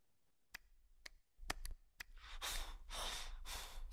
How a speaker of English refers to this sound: He's all breathing heavily.